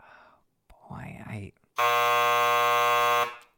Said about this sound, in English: God, it's hard for me to hear that buzzer go off again. Yeah. Oh, yeah. Well, not as hard as it is for me. It's actually much easier for me to hear it because I'm pushing the button.